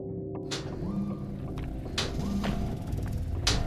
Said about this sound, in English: I heard it before I saw it. The sharp, steady clicking of metal against sidewalk. A machine. A jagged assortment of black metal shapes advanced towards us on spindly appendages.